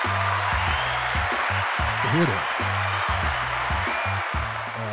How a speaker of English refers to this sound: The applause.